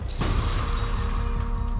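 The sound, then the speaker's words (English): A JCB digger smashes through the outer perspex sidewall of an exhibition dome with a sudden loud shattering crash, followed by continuous crackling debris showering down onto the interior over the deep, steady rumble of its engine. “Inside the dome, just as the final school child is being rushed to safety, the JCB reaches the outer perspex skin of the dome, then, to the amazement of everyone watching, crashes through the sidewall.”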